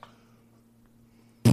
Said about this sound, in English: you need to stop farting in that pillowcase